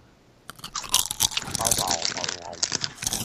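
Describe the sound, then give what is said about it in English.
Crunching of crisp Sun Chips, a rapid series of sharp, dry bites and chewing over about three seconds, fairly loud, with no voices over it. “All right, I got Sun Chips.”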